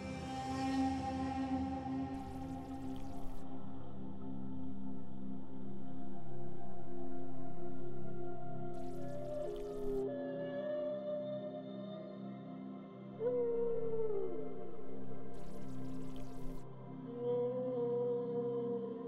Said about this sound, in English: The whales begin to bring you back to the temple of Neptune, bring you back to the temple.